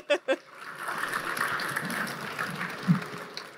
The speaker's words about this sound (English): And I guess we'll open it up. Yes, applause. Applaud them.